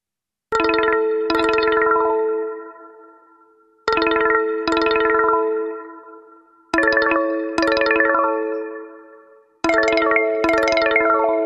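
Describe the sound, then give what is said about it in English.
Two separate stock cell phone ringtones: electronic chimes repeat in four bursts of two bright, bell-like tones, each ringing out and fading before the next pair. Clear and fairly loud, with no voices. “So those are two separate ringtones, but those are stock ringtones that come standard on a phone.”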